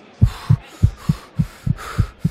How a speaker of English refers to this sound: Before I start the race, the nervousness is making my heart beat fast, and it's making me want to breathe fast, so I have to slow down my breathing.